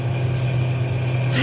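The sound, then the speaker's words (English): A truck engine runs with a steady, low, droning rumble, constant throughout, with a brief higher sound rising over it near the end. “Stop the truck.”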